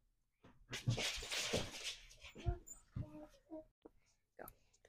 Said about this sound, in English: Daddy's trying to stop the doggies from wrestling around down there.